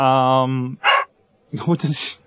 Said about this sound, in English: And the dog joins us on the show. We'll deal with it. We'll just bark louder.